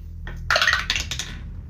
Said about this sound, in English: Gotta love it when the dice spins. It's a 6.